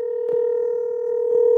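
A steady, unbroken telephone tone hums through the whole moment as a phone call to Jerry Lynn is dialed, fairly loud, with two brief soft clicks over it and no one speaking.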